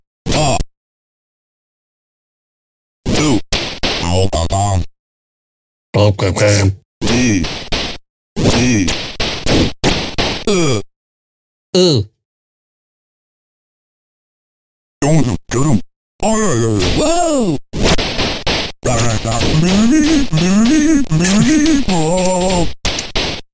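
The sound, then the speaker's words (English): A voice imitates the pained groans of someone being whipped, a string of short, loud 'aw'-like cries broken by brief silences, then a longer run of strained, wavering vocal moans. “Our favorite is when you get the guys and they go, aw, aw, like that, aw. The sound of pain.”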